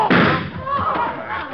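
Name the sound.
gunshot sound effect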